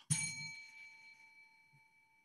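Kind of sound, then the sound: signal or alarm, bell being rung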